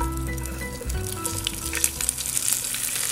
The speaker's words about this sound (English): Okay, so after I put the cabbage in with the oil, it starts burning. So you don't want it to burn, so you add water.